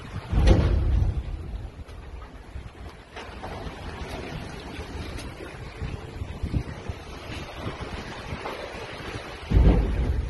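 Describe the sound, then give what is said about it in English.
Heavy storm wind and churning seas roar steadily against a cruise ship, heard from crew quarters just destroyed by the storm, with deep rumbling and loud buffeting gusts surging near the start and again at the end. No voices. “That's from crew quarters that just got destroyed by the storm.”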